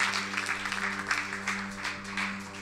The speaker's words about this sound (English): Let's clap our hands one more time.